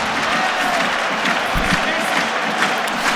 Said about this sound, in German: Der Jubel hat natürlich jetzt wirklich 1 Minute gedauert. So ehrlich müssen wir sein.